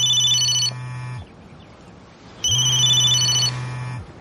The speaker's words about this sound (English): So cut to the Bartowski house, and Chuck's not answering the phone. Why wouldn't he answer when Sarah's calling?